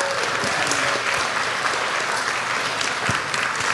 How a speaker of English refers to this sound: Big round of applause.